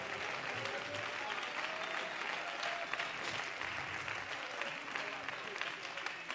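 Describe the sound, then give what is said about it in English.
An audience clapping their hands unto the Lord in praise, a sustained, dense wash of applause that stays steady and loud throughout, with faint voices mixed underneath. “Come on, clap your hands unto the Lord and give him your best praise.”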